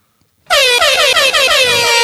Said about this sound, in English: Air horns.